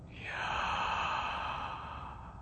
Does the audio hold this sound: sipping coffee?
no